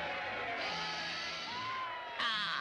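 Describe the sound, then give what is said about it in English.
A crowd cheers in a dense, steady roar, with scattered whoops and yells rising above it and a louder surge of shouting near the end. “I guess one of the other things that is really unique about Believer Bugs, the episode, is that they actually recorded the crowd.”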